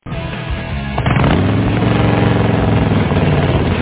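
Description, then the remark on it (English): A motorcycle engine revs loud, its throaty rumble surging after a brief idle and then holding a steady, powerful roar with no voices. “Visit the world's best motorcycle show held every day at Bob Schultz Motorcycle Supermarket.”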